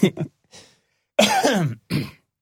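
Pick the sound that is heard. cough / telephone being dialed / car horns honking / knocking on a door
cough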